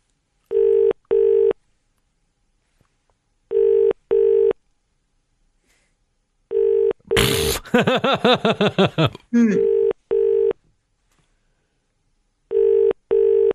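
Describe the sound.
A telephone ringing tone repeats in steady double pulses, ring-ring, about every three seconds, clear and electronic as if heard down the line, with a brief burst of voice and noise midway.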